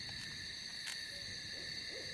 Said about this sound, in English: That's an owl. Hmm. What kind, do you think? Oh, you know how my hearing is these days. Barn? Maybe? Maybe.